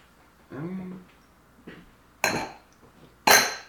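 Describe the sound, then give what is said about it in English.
Two sharp, bright clinks of festive green glasses topped with champagne striking each other, each ringing briefly with a high shimmer, spaced about a second apart; a short murmured voice comes just before them. “Oh my god, and we have our festive green glasses.”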